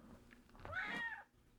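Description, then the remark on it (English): A single drawn-out meow from the cat JoJo, right into the microphone and fairly loud, rising then falling in pitch over about half a second, with no one talking. “Oh, wow. JoJo on mic? JoJo, what's your favorite turkey?”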